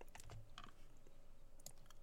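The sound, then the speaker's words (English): A handful of quick computer keyboard clicks in an irregular burst while copy-pasting, fairly quiet, with no one talking. “So I can totally copy-paste.”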